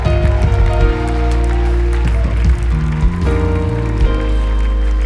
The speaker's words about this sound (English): They're still coming and we're still clapping.